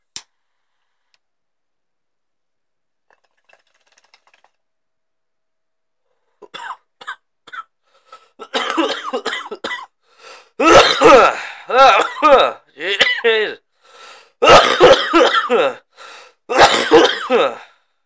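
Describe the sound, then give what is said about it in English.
A heavy coughing fit after smoking: a few faint throat sounds, then a long run of loud, harsh, raspy coughs in close succession, coming in clustered bursts with no talking. “Big smoke cough over here.”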